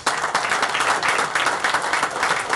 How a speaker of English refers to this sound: David Valente, ladies and gentlemen, now we will stick on this side of the table. A round of applause for Valente.